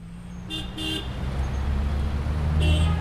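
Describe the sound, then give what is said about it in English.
Several short car horn toots sound over a steady low rumble of street traffic in Jordan, with a couple of quick honks early on and another near the end. “My fellow students and I described Jordanian traffic as lawless.”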